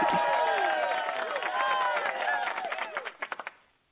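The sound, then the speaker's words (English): An applause sound effect: a crowd applauds and cheers loudly, with whoops and shouts layered over steady clapping that thins out to a few scattered claps before stopping abruptly. “we're going to give Dr. Washington the high budget applause that we spare no expense for again”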